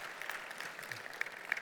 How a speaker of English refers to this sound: a big round of applause as she's seated today.